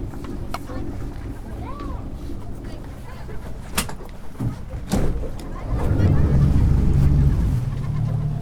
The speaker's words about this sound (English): So you can't turn the wind off, can you?